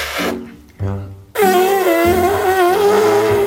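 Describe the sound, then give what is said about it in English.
Loud fart noise: two short, low sputtering bursts, then a long, raspy blat with a wavering, trumpet-like pitch that holds to the end. No talking over it. “The fart is funny because of the sound.”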